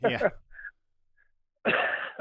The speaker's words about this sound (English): I got a cough that, you know, once you get a cough, in these winter months, it lasts for weeks, you know?